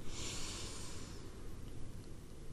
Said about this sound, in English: Okay, so before we get started, let's do our relaxation ritual. We're going to breathe in through the nose and hold it for a few seconds. And release.